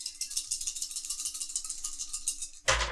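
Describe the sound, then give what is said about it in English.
Four dice clatter and rattle together for a few seconds, like being shaken in a hand or cup, then tumble out onto a table with a louder final clack; it is a combat roll in a game, landing on one, two twos and a three. “Dion, you were first on the dance floor, so you give us the first combat roll”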